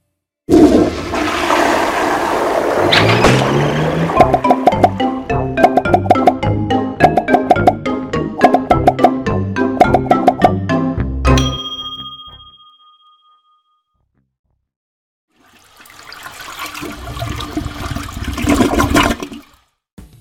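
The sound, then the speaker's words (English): A toilet is flushed five times in a row: a long run of loud, rhythmic ringing, clanking tones, a brief silence, then a rushing burst of water lasting several seconds. No one speaks. “Yep, that was five flushes.”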